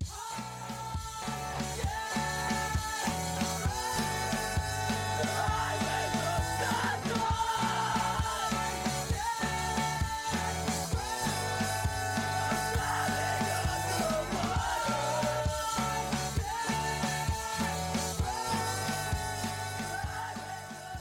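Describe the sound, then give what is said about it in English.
A loud, driving emo rock song, heard from its middle section, with distorted guitars and steady drums, topped by layered group vocals shouting together in a communal chant throughout. “So I think hearing this kind of layered vocal texture, which is like super common in this style, is also a way of reminding us to participate at that moment.”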